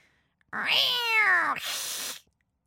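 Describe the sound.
A person imitates a cat with a single drawn-out meow, its pitch rising then falling, ending in a short breathy hiss-like tail. Fairly loud, no other sounds.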